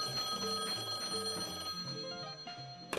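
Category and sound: household object, landline telephone ringing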